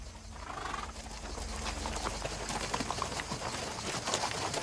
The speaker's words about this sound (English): And in the clip, there's Saul on a horse, and he's riding out, and he's going to get a full picture of the light of heaven.